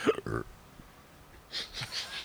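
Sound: burp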